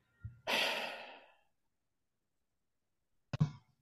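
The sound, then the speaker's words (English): A single snore: a brief low rumble flows into a long, airy breath out, then after a quiet pause comes one short, throaty snort. Fairly soft, with no talking. “What am I hearing? Snoring. I hear snoring.”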